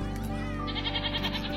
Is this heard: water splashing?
no